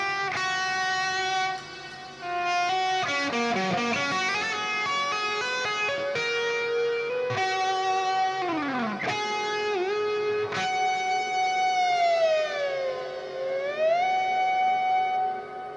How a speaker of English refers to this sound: Echo with a whammy bar, man, it just makes for cool stuff.